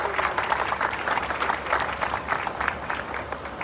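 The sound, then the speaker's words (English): An audience applauds the MCTS crew steadily, a dense wash of many hands clapping at an even, fairly loud level with no one speaking over it. “So I appreciate that applause one more time for the MCTS crew and so many others that have played a role.”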